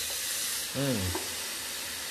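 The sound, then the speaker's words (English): A strong, high-pressure stream of water pours steadily from an unattached kitchen sink faucet as a glass of water is poured, a constant rushing hiss throughout, broken midway by a brief, falling, voice-like tone. “Lately, we've been having some strong water pressure. I think it's because our kitchen sink is unattached.”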